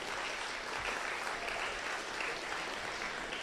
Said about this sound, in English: So, and then I wanted to bring up, which we did already, but can we get a round of applause for the guys in here, and they know who they are, who made the ACC Hymns app.